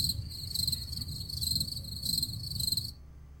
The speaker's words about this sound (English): I'm getting more use out of that cricket button than I have ever gotten before.